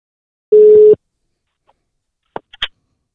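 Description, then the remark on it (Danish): A single steady ringback tone from an outgoing phone call sounds for about half a second, followed by silence and then a few sharp clicks as the line connects. “Men vi starter med at tjekke ind hos Rasmus Grønbæk. Vi ringer op.”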